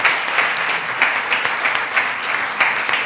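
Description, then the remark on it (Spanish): A crowd applauds the media team working the cameras, sound and broadcast, steadily, a dense wash of many hands clapping at a fairly loud, even level with small bursts throughout, and no one speaking over it. “Oiga, ¿por qué no les damos a ellos un aplauso de verdad, de gratitud?”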